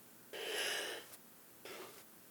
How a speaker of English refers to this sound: I just yawned